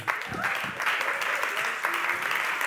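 Steady applause from a crowd, a dense, continuous patter of many hands clapping at an even level throughout, with a few faint voices underneath.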